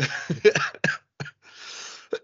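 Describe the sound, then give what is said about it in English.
A loud fit of harsh coughs: a cluster of quick bursts, then a few spaced single hacks, with a long breathy, raspy exhale before the final cough. “It's a spooky cough.”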